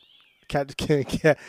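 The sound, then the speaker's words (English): A cat meows loudly, letting out a quick run of three or four drawn-out, yowling cries in a row. “Cat just went. Cat just went off right now.”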